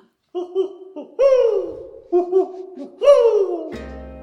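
Owl-like hooting in two matching phrases, each a few short hoots and then a longer, louder hoot that slides downward. The calls are fairly loud and clear, with no talking.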